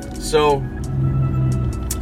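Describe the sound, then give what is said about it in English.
A steady low rumble of a car being driven, heard from inside the cabin by the driver, continuous and fairly loud throughout, with brief bits of the driver's voice over the road and engine drone. “You hear me driving. I'm in the car, of course”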